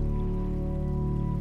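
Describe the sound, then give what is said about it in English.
A steady, continuous rush of crashing water from South Falls, a massive waterfall in a tree-lined canyon several hundred feet below, fills the scene without pause, blended with a soft sustained low drone underneath. “Several hundred feet beneath you, set in a tree-lined canyon, lies a massive waterfall. The crashing sounds of the water envelops you.”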